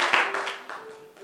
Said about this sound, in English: Why don't you clap your hands together for the Lord as you take your seats.